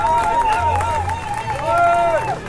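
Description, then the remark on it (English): A roadside crowd at a cycling road race cheers and shouts bravo loudly as riders pass, voices rising and falling in long calls of encouragement over a steady background of chatter and noise. “Lots of bravos from the crowd.”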